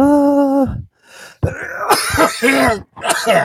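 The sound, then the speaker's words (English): A loud sneeze: a drawn-out, pitched intake of breath, a short pause, then a series of harsh, explosive bursts that sound like sneezing and throat clearing, with no talking. “Wow, I never sneeze.”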